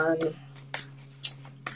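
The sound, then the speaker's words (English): Tarot cards being shuffled at the start of a tarot reading about a job interview process: a few quick, crisp papery riffles in irregular bursts, with a brief voice at the start and a low steady hum underneath. “So the first thing I'm going to do is I'm shuffling to see what does this interview process look like for you?”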